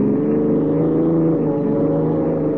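car engine speeding along

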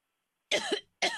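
cough

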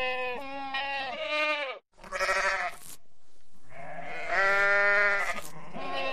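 goat bleating sound effect

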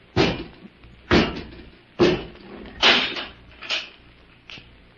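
door slamming shut

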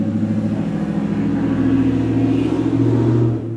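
loud car engine revving

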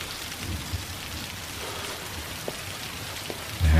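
rain falling

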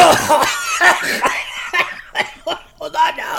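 coughing

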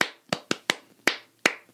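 rhythmic hand clapping pattern

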